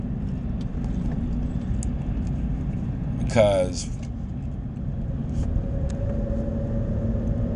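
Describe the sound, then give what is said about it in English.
Steady low rumble of road traffic passing by an airport runs throughout, with a brief, bright tonal burst near the middle and a faint high whine later; a voice speaks briefly. “Passing by an airport right now.”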